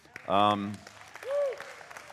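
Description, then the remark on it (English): An audience at Redeemer Church applauds the Roe versus Wade reversal with a steady patter of scattered claps, while a couple of short raised voices or calls rise briefly over the clapping. “I want to say, yes, while we applaud, I also want us to be, as Christians, mindful of what that means our responsibility is.”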